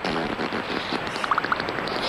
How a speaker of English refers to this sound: That's a bathtub fart right there. But instead of a bathtub, it's a lake. That's all it is. So let's get this beaver some Tums, man.